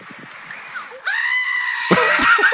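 A loud, quavering sheep bleat sound effect played from a phone, with a strained, almost human-sounding cry and a slightly tinny, compressed quality, followed by a second wavering bleat.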